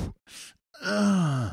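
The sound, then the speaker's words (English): A voice imitates heavy exertion breathing while doing a bench press: a short sharp exhale, a breathy rush of air, then a long strained groan sliding downward in pitch, fairly loud. “I'm breathing a little too hard and I feel like I need to take a big breath, right?”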